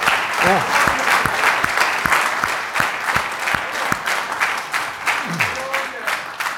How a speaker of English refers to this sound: Amen. Yeah. Amen. Come on, give the Lord a clap off. Yeah.